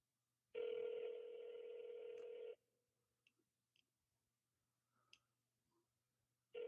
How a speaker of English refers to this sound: We're just getting ringing so far.